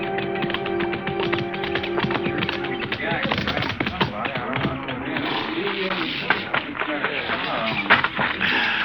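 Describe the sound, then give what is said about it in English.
Horse hooves clip-clop steadily, a busy run of hard taps layered over a murmur of voices and background bustle. “I'll turn your horse in with a remuda.”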